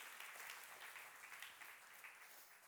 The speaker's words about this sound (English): Can we give him another round of applause?